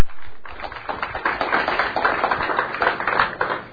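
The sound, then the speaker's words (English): An audience at a Moraine Valley Community College Library event applauds the speaker steadily for several seconds, a dense patter of many hands clapping at once, fairly loud and sustained with no voices over it. “Thank you, everybody. Round of applause.”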